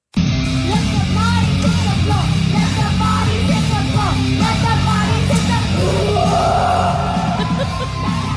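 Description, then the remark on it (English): A young girl at a fair belts out a raw, guttural rock-style scream-sing, loud and sustained for about eight seconds, gritty with a dense, noisy backing. “She goes all in on the guttural rock and roll scream.”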